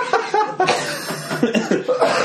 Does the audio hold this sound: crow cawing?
no